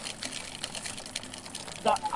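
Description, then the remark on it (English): A coffee maker in an apartment, said to put out 45 decibels of sound, gurgles and hisses in a steady, rough wash of noise with faint rhythmic pulses, ending in a brief louder burst with a short high squeal. “That's what your coffee maker sounds like.”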